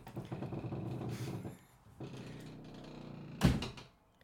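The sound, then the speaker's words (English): A door creaks open in a long, drawn-out groan that pauses briefly and resumes, then ends with a solid thud. It is fairly loud, with no one talking. “Yay, that was the longest creak in history.”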